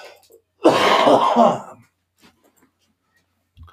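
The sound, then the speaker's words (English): A harsh, wet cough from a person still fighting pneumonia bursts out, lasting about a second with a raspy, throaty quality, then trails off into near silence with only faint small noises afterward. “And if you'll excuse me for a second, I am going to cough.”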